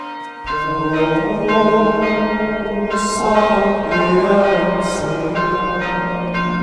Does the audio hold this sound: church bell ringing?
yes